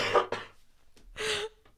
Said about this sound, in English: excuse me, I'm going to cough.